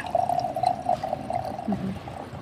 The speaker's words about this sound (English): Can I pour you a glass of wine first? You look like you need a drink.